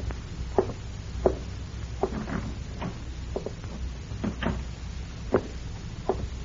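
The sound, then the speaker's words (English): A house door is eased shut quietly, with a scattered series of soft wooden clicks and light knocks from the latch and frame over a low, steady background hum. No one speaks. “When you walk into this house, Lafe, close the door quietly.”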